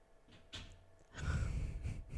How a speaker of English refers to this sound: And you'll hear doors opening and shutting because